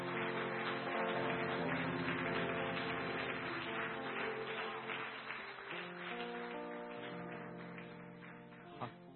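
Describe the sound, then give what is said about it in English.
A church audience claps as a clap offering to the Lord, in a dense, steady wash of applause over sustained, chord-like music, staying loud for about nine seconds before easing slightly near the end. “Shall we give a clap offering to the Lord?”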